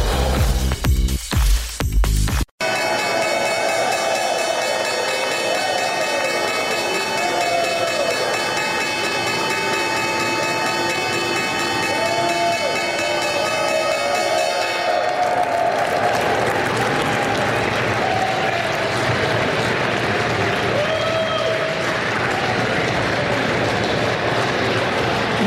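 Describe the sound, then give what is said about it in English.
The opening bell at the New York Stock Exchange, a loud electric bell, rings continuously for about twelve seconds in the morning over steady applause and cheering, then stops while the crowd keeps clapping loudly and chattering. “That was the opening bell this morning.”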